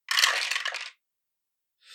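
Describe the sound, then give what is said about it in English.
Dice clatter, tumbling and rattling across a surface for about a second during a tabletop role-playing game, then silence before a second brief roll of two dice begins. Fairly loud, with no voices. “One, two, three, four, and I can reroll two dice.”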